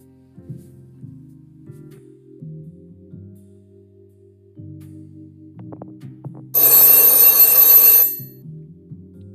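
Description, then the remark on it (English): A single loud burst of an old-fashioned telephone bell ringing, lasting about a second and a half, rising sharply out of a soft, low tonal background. “Thanks, but the phone will be plenty.”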